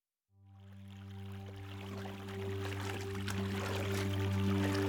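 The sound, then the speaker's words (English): River water of the Mississippi River flowing and lapping around a canoe steered by Meriwether Lewis toward St. Louis, Missouri, a steady rushing wash that swells gradually louder, with a low sustained drone humming beneath it and no voices. “Meriwether Lewis steered his canoe down the Mississippi River and stared in awe at the banks of St. Louis, Missouri.”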